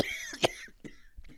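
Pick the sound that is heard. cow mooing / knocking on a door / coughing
coughing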